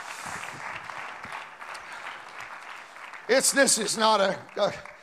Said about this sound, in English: Oh, come on, clap your hands unto the Lord right now.